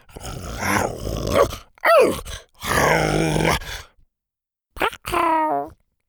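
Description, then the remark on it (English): A voice imitates a hungry T-Rex growling as it eats flapjacks and gets poked in the face by Triceratops' horns: several loud, rough growls and groans, some rising and falling in pitch, broken by short silences. “He growled every time the Triceratops' horns poked him in the face when he bent down to take another bite.”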